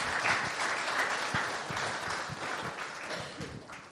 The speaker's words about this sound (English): That's actually quite courageous. Let's give a clap for being courageous. Thank you.